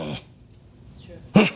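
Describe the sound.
A speaker growls in imitation while talking about the spirit of faith, with a rough throaty burst at the start, a quiet pause, then a louder, harsher growl at the end.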